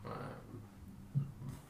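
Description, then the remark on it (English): A single short, low-pitched burp, soft and quick, rising briefly above a faint low rumble with no talking around it. “Oh god, I just burped.”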